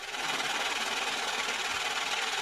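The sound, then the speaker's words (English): A money counting machine sound effect whirs in a steady, rapid mechanical flutter, bright and papery, running continuously at an even loudness with no voices, played to celebrate the Dow Jones being up. “Let's clap for the Dow Jones. Let's give it a money machine.”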